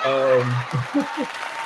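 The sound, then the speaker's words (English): A brief burst of steady clapping applause, with a held vocal tone at the start and a few short voiced sounds over it, fairly loud throughout. “So a round of applause for all of you for still being here and rocking out and getting out all y'all frustrations in the chat.”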